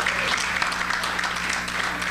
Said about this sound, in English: By finding out, by applause, we're all my rock music fans out there tonight. Will you bang your hands together if you're a rock music fan?